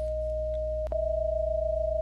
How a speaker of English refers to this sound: So that's one of the 8 tones. 648. Plus 621, which is another 8 tones, and that produces binaural frequencies of 27 hertz, and we can hear. We're going to hear how it sounds like.